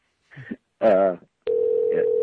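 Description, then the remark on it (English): After a couple of short vocal sounds, a steady, unbroken telephone ringing tone of an outgoing call starts and holds at an even, fairly loud level through the end. “We're getting them on the Who line. Who could this be, Sal? All right, we're ringing.”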